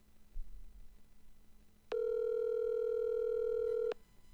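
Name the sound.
phone call ringing out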